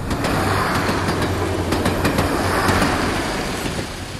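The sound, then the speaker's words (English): A train rolls steadily along the rails about 10 minutes from Ypres, about to pass through Hill 60, with a loud, continuous rumble and faint clickety-clack from the wheels, heard from on board the train, with no voices. “We're just on the train, and we're just about to come up to and go through Hill 60”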